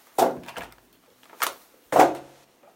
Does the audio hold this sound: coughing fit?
no